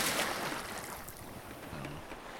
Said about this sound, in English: How do pirates say goodbye? I think they just walk the plank and splash into the water.